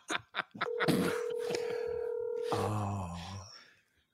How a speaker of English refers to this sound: Why is my mother's cell phone ringing?